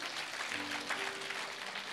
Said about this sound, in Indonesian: Boleh tepuk tangan kita bagi Tuhan.